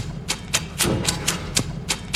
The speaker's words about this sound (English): There was a lot of clicking, man. A lot of lighter. I didn't like that dumb device. I thought it was dumb.